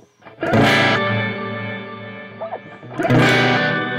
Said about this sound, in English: 3 octaves of reverb. LFO affects the volume of the reverb, creating a vintage organ effect.